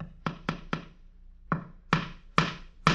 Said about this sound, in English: The man is nailing a horse's picture to the wall.